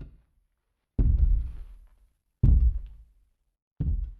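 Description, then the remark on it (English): Three slow, heavy footsteps in a video game thud one after another at an even pace as someone walks away, each with a deep booming impact that fades out. No voices, just the steps against silence. “when you hold the door and you hear the footsteps walking away, it means they're gone?”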